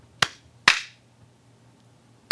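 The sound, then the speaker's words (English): A slow clap: three sharp, loud hand claps spaced unevenly, the first two about half a second apart and the third after a long pause, with no talking. “Let me just slow clap your ass.”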